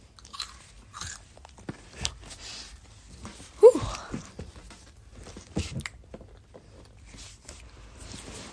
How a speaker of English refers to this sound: Now we have a snack to eat while we literally, like, do, like, one of the most boring things. Anyway, share the first satisfying crunch. It's wonderful.